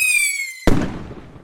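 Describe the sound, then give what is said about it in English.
A steady, high whistling firework shrieks for a moment, then cuts off into a single loud explosion whose rumble and crackle trail away over the next second. Fireworks going off on the 4th of July weekend. “Well, it's 4th of July this weekend in this country, and you undoubtedly have fireworks going off around you.”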